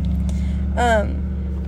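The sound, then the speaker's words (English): A truck rumbles past outside, its engine a steady low drone throughout, with a brief higher tonal sweep midway through the pass. “He has a really cool truck.”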